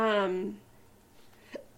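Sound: hiccup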